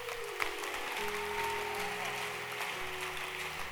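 An audience claps steadily in a dense, even wash of applause, with sustained keyboard or organ notes shifting underneath throughout.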